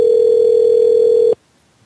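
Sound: telephone dial tone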